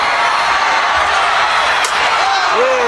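A steel folding chair slams once against the back of a wrestler, the world heavyweight champion, denting the chair, a sharp, brief impact cutting through a loud, steady crowd roar, followed by rising whoops from the audience.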